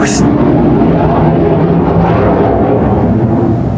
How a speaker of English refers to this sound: There's the UFO. Every time it's a jet, and it's a fucking UFO.